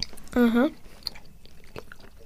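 Someone chews a dense caramel and lime candy, making soft, sticky mouth clicks and smacks scattered across a couple of seconds, with a short hummed vocal sound near the beginning.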